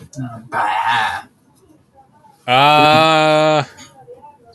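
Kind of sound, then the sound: animal, billy goat bleating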